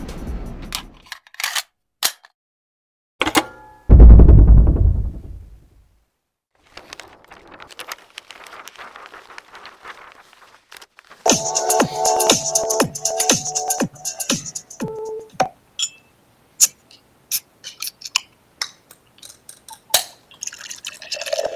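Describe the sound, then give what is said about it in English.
Scattered clicks and a sharp, booming pop give way to a drink being poured, a rhythmic glugging run of bubbly pulses, then sparse drips and clinks. No one speaks. “That is the pour.”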